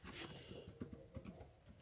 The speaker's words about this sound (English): Sorry if you hear typing, I'm on my laptop getting data.